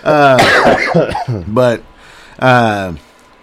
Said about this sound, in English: Man, sorry, my throat is absolutely tickling. I'm trying not to hack a lung up and trying to keep talking.